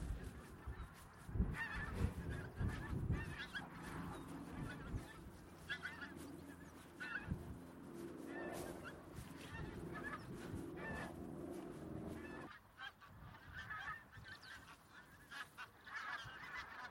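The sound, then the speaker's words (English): A large flock of pink-footed geese, hundreds packed in and grazing on a grassy marsh, calls continuously, dozens of overlapping honks and yelps blending into a dense, busy chorus that thins slightly toward the end. “The call of wild geese, pink-footed geese, which there are thousands here, I think, out across this marsh.”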